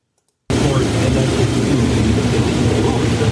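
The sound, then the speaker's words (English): After a brief silence, a combine harvester engine in Wisconsin, harvesting corn, starts droning loudly and steadily, a thick, rumbling mechanical roar with a broad hiss that holds constant for the rest of the moment. “Oh, and as he's driving, there's a tractor next to him with like a little trailer on it that catches all the shit that his combine picks up and it drops it in the back.”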